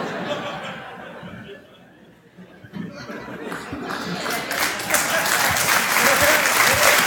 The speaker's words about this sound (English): You see that look he gave? He's like, give me an applause break, you idiots.